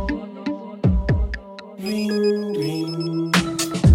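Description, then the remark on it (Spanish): A telephone rings with a melodic, musical tone: a few quick plucked notes, then sustained chiming tones that shift pitch, moderately loud and with no one speaking. “Esperando a que suene el teléfono.”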